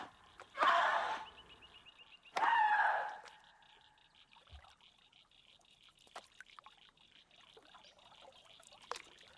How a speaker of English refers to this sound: When the drama is over, she takes off her headphones, goes down to the water, and splashes it with a stick.